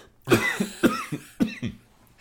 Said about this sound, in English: I'm going to cough for a minute. Excuse me. I always cough when I talk about Dr. Fauci.